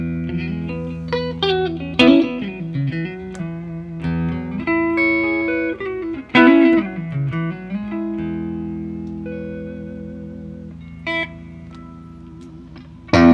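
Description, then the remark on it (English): An electric guitar plays through a clean amp tone with spring reverb, sounding like an old Super Reverb amp, letting sustained notes ring with a few swooping pitch bends and sharper picked accents, fairly loud with no voices. “here's my clean tone.”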